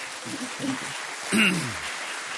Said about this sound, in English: That applause was for Lizzie, by the way.